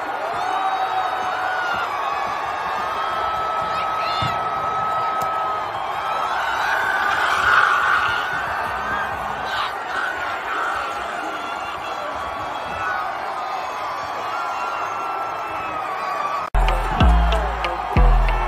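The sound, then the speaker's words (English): A large crowd at a celebration roars and cheers continuously with scattered whoops and shouts, a dense wall of noise that swells around the middle before a few sharp thumps near the end. “Chris Jones jumping in the crowd, pouring a beer all over his face. Maybe you have a little footage of that”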